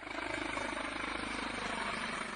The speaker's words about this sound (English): Firefighters used a helicopter to douse the landfill site with water as they struggled to get the blaze under control.